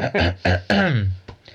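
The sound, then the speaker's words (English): A person imitates coughing and throat clearing: a few quick, voiced ahem-like bursts in succession, the last one longer and more emphatic, with no other sounds. “I think Belisarius just kept coughing a bit louder.”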